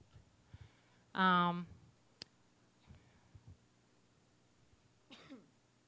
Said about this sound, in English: Sorry, my coughing. Got the flu.